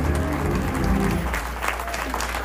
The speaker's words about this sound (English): Clap those hands and give God a praise. Come on, give God a praise for real.